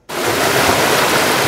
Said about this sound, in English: Residents woke up to see this. Just pouring into the home. Water gushing into their yards and homes. I saw the water freaking out all over. I said, wow, it's end of the world or something.